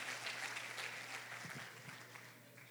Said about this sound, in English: Give the Lord that round of applause.